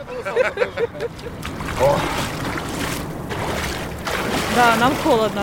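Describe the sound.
Water sloshes and splashes steadily as a bare-chested man wades waist-deep into a cold, unfrozen river with floating chunks of ice and dunks himself three times, with bursts of churning water and indistinct voices calling out in the background.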